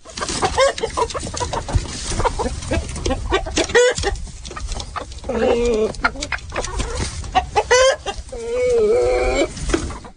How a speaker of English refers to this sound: How about some chickens coming out of the coop?